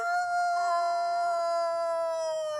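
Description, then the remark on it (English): A person's voice imitates a wolf howl, one long, loud, sustained note held steady with a slight waver for about two and a half seconds, with no talking. “But our roar wasn't so great, so we said, let's just make it a howl. like a wolf.”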